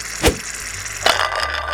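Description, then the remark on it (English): A shaving cream spray can with a stuck button is thrown into a bathtub and clatters with two sharp metallic knocks about a second apart, backed by a steady spraying hiss that carries on afterward. “Throwing the can into the bathtub.”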